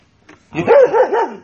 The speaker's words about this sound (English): That was our evil demon dog that we keep around here. She's actually very sweet, but she will eat your face. She don't like the guest.